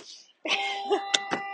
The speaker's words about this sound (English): Oh my god, these bells. Anyway. These fucking bells.